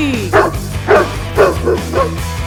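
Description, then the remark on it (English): Several hounds bark in a steady rhythm, about five loud barks spaced roughly half a second apart, with a low droning tone running underneath. “Release the hounds.”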